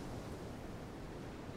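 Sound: ocean waves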